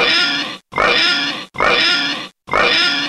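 A pig oinks loudly four times in a steady rhythm, each harsh nasal grunt lasting under a second with brief silent gaps between, close and clear with no talking.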